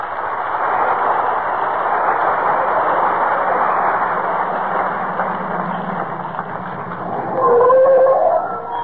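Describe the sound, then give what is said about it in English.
A car engine hums and rumbles steadily, then its faulty brakes let out a loud, wavering squeal for about a second as Fibber McGee and Molly's car pulls up and stops in front of 79 Wistful Vista, home from vacation. “But just as we open their show tonight, who should be driving up in front of 79 Wistful Vista, home from their vacation, but Fibber, McGee, and Molly?”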